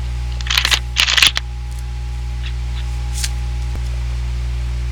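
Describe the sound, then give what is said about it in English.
Two quick, crisp riffling bursts of cards being shuffled for a card reading, followed by a faint tap, all over a steady low electrical hum with no talking. “And then they shuffled.”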